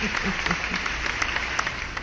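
Steady audience applause: a dense wash of many hands clapping at moderate volume for the full two seconds, with faint voices murmuring underneath at the start.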